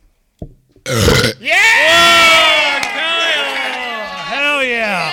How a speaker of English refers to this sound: All right. You got a burp for us.